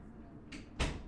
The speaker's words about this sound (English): I had to close my door.